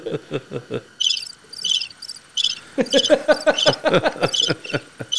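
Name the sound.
crickets chirping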